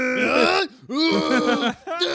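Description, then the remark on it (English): Someone imitates the effortful yells and grunts a character named Frank makes as he runs in to do something: three loud, strained vocal bursts with rising and falling pitch, groan-like and exaggerated, separated by brief pauses. “And I forgot how stupid his yells and grunts are.”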